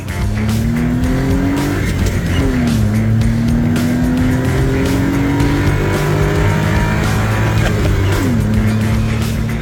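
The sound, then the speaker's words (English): The small 660cc engine of a 1992 Suzuki Carry kei truck drones loudly and steadily under hard acceleration, its pitch climbing through the gears with short dips at each shift, continuous for the whole stretch with no voices. “those car sounds were sent in by Patrick. He's putting the power down with his 660cc Suzuki Carry, a 1992 Suzuki Carry”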